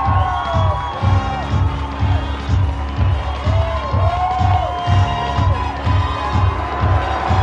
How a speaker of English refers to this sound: All right, cue it up. Cue up the Trump dance. Cue it up. Cue up the massive energy, the massive crowd.